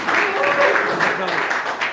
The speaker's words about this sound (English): You should clap for them, because they're the ones that brought me to Shimon HaTzadik.